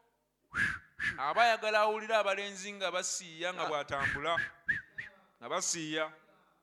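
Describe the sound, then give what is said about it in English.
A voice imitates a wolf whistle, the horned dog call boys make at a woman wearing makeup, a rising and falling whistled call with sliding pitch, set among bursts of energetic spoken delivery that surround and overlap it. “That horned dog call or wolf call.”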